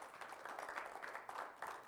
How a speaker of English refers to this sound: Y'all receive that? Give God a praise clap if you received that this morning.